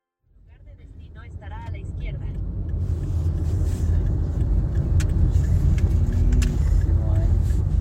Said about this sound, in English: You know, eventually they make their way out of the terminal and into the parking lot and into the car, and they drive off across the state of Florida to the town where they're from on the other side, the other coast.